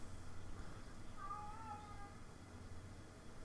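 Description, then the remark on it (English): A robot toy cat gives a single drawn-out electronic meow, fairly faint against a steady low background hum, with no talking. “Oh, the robot cat's back.”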